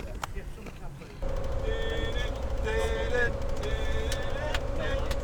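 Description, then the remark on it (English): A group of voices sings together in loud, uneven bursts on a moving bus heading back from a day out at a game in Albury, over the steady rumble and drone of the bus engine, with a constant low hum filling the background. “As you can tell, we're having a bit of a sing-along on the bus on the way back.”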